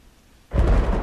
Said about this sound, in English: It keeps raining here. Darn it. I didn't even have a chance to get dry. At least there's a tunnel and a couple pagodas where I can take shelter. The rain here seems to be on a regular cycle.